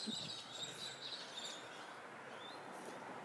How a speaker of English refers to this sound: Listen to the birds.